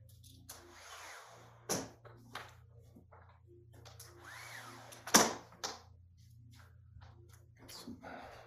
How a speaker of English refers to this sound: Let me close the windows.